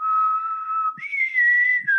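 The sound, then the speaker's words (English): A person whistles two sustained notes to call people from Penrith on board, the first steady and lower, the second higher with a slight wobble, loud, with no talking. “Oh, let me just whistle them on board”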